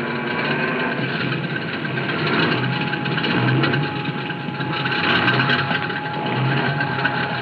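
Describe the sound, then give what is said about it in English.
A small airplane's engine idles after landing on a road, its steady, droning mid-pitched rumble holding constant with a slight rhythmic throb and no voices over it. “We're practically down.”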